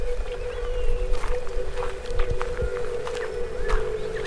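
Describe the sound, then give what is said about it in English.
A sonification of river flow, its pitch falling as the river slows to a crawl: a sustained mid-pitched drone under scattered whistly chirps and soft thuds, moderately loud throughout, with no voices. “And you can hear that in the sonification. The pitch falls as the river crawls.”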